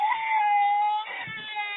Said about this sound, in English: This is a fail, as it is painfully obvious by the sound of a whiny toddler in the back seat.